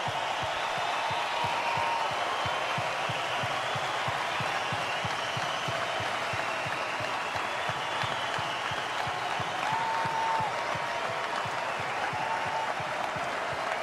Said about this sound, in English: So I'd like all of you to join me in an applause for a great man and a life well lived.